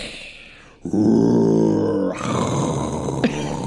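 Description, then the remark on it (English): A voice imitates a dragon breathing fire: a deep, rumbling growl-roar held for about a second, then a hissing, breathy rush of air that trails off, loud. “I think of a dragon laid back and he's breathing fire.”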